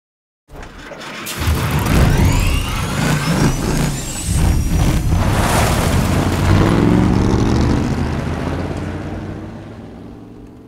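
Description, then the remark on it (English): A car motor abruptly starts up and roars loudly over a steady engine rumble for about ten seconds. Rising mechanical whines and quick sewing-machine-like spin-ups come from the belt of a motor sticking out through the hood. “There's a couple of sewing machine type spin-ups going on in there because you're right on the belt of the motor that's sticking out through the hood.”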